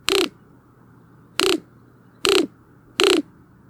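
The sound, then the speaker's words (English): A roadrunner's clacking call: four short, dry, rattling bursts, loud and crisp, with uneven gaps between them and no voices. “That sound you talk about, it's like a clacking sound.”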